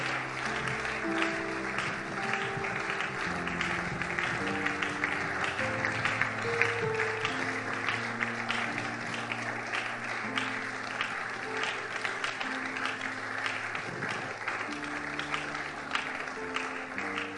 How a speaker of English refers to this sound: Young and old, make your way. Come quickly. Keep clapping. Motivate them as they come.